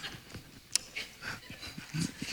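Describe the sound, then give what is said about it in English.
A dog that ran up a neighbor's driveway whimpers and lets out a few short, high yips, with one sharp yelp standing out, the sounds coming in brief scattered bursts, with no talking. “You see my dog? He ran up here.”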